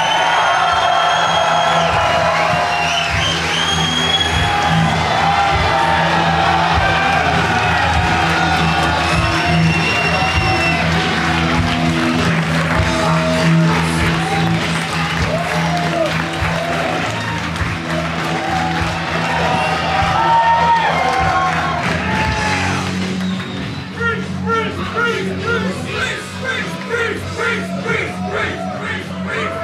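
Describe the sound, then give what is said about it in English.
A loud, rowdy crowd cheers and whoops continuously for about half a minute as a singer is introduced, with shouts and bellows rising out of a dense roar, easing slightly near the end. “Already, you've out-rowdied any other crowd we've had for one of these.”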